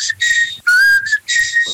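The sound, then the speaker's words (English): A person whistles a short melodic phrase of a song, the clear tone sliding between sustained notes in a few connected bursts, with no talking. “my favorite song to whistle, of course, is ….”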